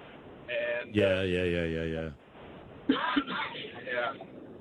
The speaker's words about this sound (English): How you doing? Yeah, you're coughing. That's what it is now.